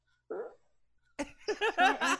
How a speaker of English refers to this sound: Try asking me for a springy fart. Or say random. What's a springy fart? Here comes a springy fart.